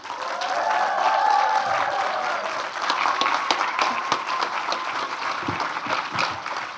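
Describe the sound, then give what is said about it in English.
An audience applauds steadily for several seconds for the creators of Robozino, a dense wash of many hands clapping with scattered cheers and whoops rising above it early on, then thinning slightly toward the end. “Okay, if I want you to all make some lovely noise and show some love for the creators of Robozino, I have the creator and director,”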